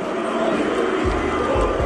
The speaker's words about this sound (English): Johnny Bairstow's ducked and then walked out of his crease. Alex Carey's just thrown the ball at the stumps and hit them. There was momentary confusion, then anger, as Bairstow was given out. Crowds booed.